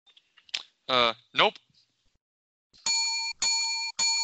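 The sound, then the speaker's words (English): A brief voice, then a new doorbell-style bell rings three times in quick, even succession, each ring a bright, steady electronic tone cut off cleanly before the next, loud. “That's a triple. I hope the people are liking the new bell.”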